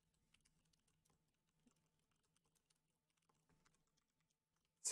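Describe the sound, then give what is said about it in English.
Quiet, irregular clicking of someone typing the words "hunting game" on a computer keyboard, keys tapping in quick uneven bursts over a low steady hum, ending with a sudden louder knock. “Just typing like hunting game.”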